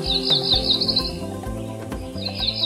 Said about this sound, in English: Today's featured feathered friend's very name suggests the beauty of the blue sky and describes its color perfectly. Cerulean, the cerulean warbler.